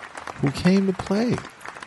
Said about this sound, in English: Let's give him his round of applause. And let's give a round of applause to B-Magic.